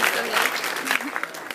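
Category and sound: crowd, round of applause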